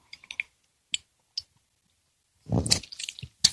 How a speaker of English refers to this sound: I'm going to take a sip of my tea here.